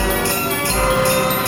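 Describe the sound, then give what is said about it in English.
Loud, sustained street organ music with a sleigh bell sound effect and church bells layered over it, bright bell strikes flaring at intervals above the steady, dense organ tones. No voices. “Basically, I've layered over a sleigh bell sound effect. It took quite a while to get it in time. And also the sound of church bells.”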